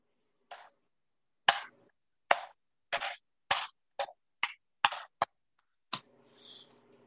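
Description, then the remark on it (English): A slow hand clap given in response to a rant: about ten sharp, crisp claps, spaced unevenly and gradually speeding up, then a faint hiss trailing off after the last one. No one speaks. “That's me giving a slow clap to that rant that we just heard.”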